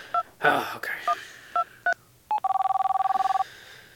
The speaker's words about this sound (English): Hold on, I gotta make this phone call really quick. Yeah, hold on.